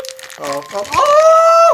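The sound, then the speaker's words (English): Crinkling plastic wrapping around an item featuring a character from A Bug's Life rustles in short crackly bursts as it is opened, heard under voices, with a sustained, pitched vocal exclamation near the end. “It's in plastic?”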